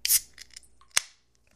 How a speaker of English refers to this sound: Tonight to celebrate. First, we're going to be opening a beer.